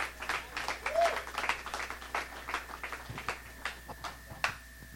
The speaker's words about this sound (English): Give him a hand clap, please.